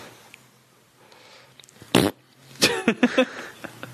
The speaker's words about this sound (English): That's always welcome, by the way. Anytime somebody bends over, just a fart noise.